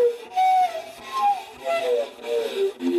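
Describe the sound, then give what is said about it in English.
A whale-like siren call sound effect for TV show sound design: eerie, high moaning tones that glide up and down in pitch, overlapping in several wavering swoops that keep going without a break and no talking. “But it's also, I use it in the call, the siren call, as for making these kind of whale-like sounds.”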